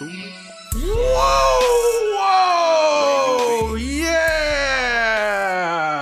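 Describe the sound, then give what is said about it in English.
Loud, drawn-out yelling bursts in after a brief quiet moment and carries on for several seconds, the voice sliding down in pitch, then jumping up again and wavering. “Hopefully that was enough yelling for you, listener.”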